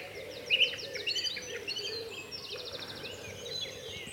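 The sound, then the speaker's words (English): An agitated moorhen calls amid a busy chorus of other birds, with quick repeated chirps and trills over a steady low background hum. Moderate in level, with no talking. “I'll pause here for a moment. Beside the agitated moorhen.”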